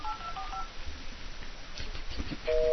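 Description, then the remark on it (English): A quick series of electronic touch tones as a phone number in Canada is dialed live, short beeps in rapid succession, followed by a steadier tone near the end over a faint background hiss. “I just realized that the phone was a little bit tingly when I was dialing the numbers.”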